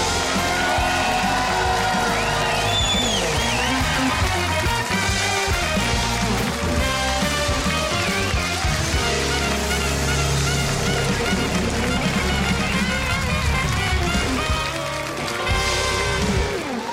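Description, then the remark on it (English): A theater audience at the Huckabee TV show cheers and applauds as host Mike Huckabee is introduced. A loud, unbroken roar of clapping and shouting holds steady for the full stretch without fading. “Oh, what a great crowd. Gosh, I love it when we have this much enthusiasm here in the theater.”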